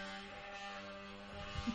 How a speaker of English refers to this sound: What's that going on? Oh, they're doing a little sanding or grinding upstairs.